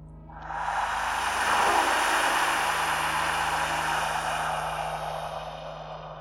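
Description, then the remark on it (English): A harsh, raspy hiss rises quickly and holds steady for several seconds, loud, with a breathy, rough texture that fades slightly toward the end. No one speaks. “I woke up very suddenly, hearing this awful noise like a raspy hiss.”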